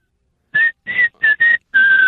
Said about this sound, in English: I'm glad I finally found some good whistling. Oh, I hate whistling of all kinds. But the fingers in the mouth sporting event whistle is the one that drives me the most insane.